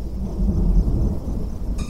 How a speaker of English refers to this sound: I watched as the billowing black clouds piled over one another, and felt the air wince as distant thunder shook it.